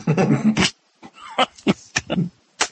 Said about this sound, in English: I think your furry friend has some suggestions as to what we should do. Are you hearing that dog whine?